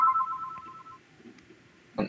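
A phone rings once with a steady electronic tone lasting about a second, then fades into quiet before a short, sharp noise at the end.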